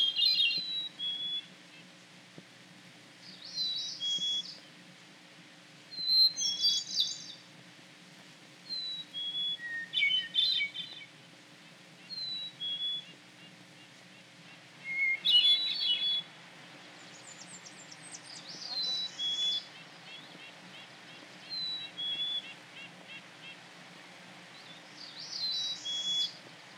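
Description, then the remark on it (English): Birdsong captured with a parabolic microphone: repeated bright, high chirping and whistled phrases in short bursts every few seconds, standing out clearly over a low, steady background hum, with no voices. “this idea of the parabola isolating birds”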